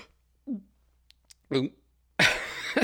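A small, brief burp with a low, croaky tone, made in place of an exhale, followed by a couple of faint clicks, another short throaty vocal sound, and then a loud breathy rush of air as the person exhales.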